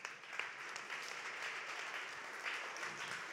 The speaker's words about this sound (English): Yeah, you can clap. That's fine.